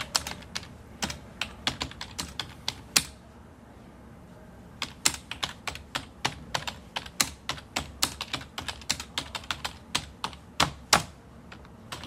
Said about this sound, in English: I used to love the sound of typewriters. You know, they would hammer away. And towards deadline, all of the people on typewriters, there would be this rising sound, and then boom, the deadline, and it was over. Total silence, everybody'd smoke.